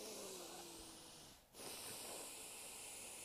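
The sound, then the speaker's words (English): Forceful breathing through a stuffy, congested nose, demonstrating nose breathing: two strong hissing breaths with a brief pause between them, no talking. “Listen to the same breathing, but through the nose.”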